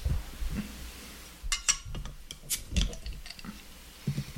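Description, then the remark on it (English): Two beer bottles being opened and poured a little each into glasses for a side-by-side comparison: several sharp, hissy pops and glassy clinks scattered over a couple of seconds, with soft low knocks and shuffling in between and no talking. “Do you want to open them both and pour a little bit each?”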